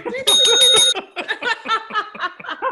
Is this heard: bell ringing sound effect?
yes